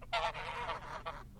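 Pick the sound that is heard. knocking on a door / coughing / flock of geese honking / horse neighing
flock of geese honking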